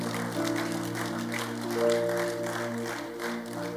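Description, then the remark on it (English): An audience claps steadily in a dense, continuous burst of applause over sustained keyboard or organ chords, with no one speaking. It is a clap offering to God during a sermon. “Give him a mighty clap offering in this house.”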